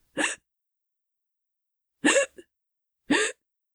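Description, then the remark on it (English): A voice imitates a creature's harsh breathing echoing off the walls of a stairway from somewhere up ahead: three short, raspy gasps, each a quarter-second burst, spaced unevenly with silence between them, the last two coming closer together. “As you're going down the next set of stairs, all of you can hear echoing off the walls the harsh breathing of something up ahead.”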